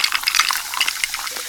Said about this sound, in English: I'm pouring it over some ice. Hear all those deliciously fizzy Pepsi bubbles?